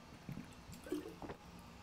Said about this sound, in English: That needed 5 seconds of water.